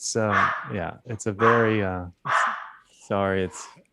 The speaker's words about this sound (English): it's dinner time for the dogs. It's exciting.